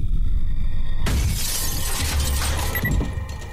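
A concrete block thrown through the glass door of a house on the outskirts of town makes a sudden loud crash of shattering glass. A cascade of shards tinkles and scatters for a couple of seconds over a low rumbling background, with no voices.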